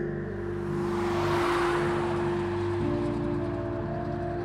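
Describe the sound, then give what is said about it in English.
Steady traffic on a street below a flat, with early evening commuters around 8 p.m. in drizzle: a continuous engine hum and a broad whoosh swelling as a car passes, then the engine tone shifts partway through. No voices. “The street below bustled with cars and early evening commuters, slick with 8 p.m. drizzle and a suggestion of thunderclouds.”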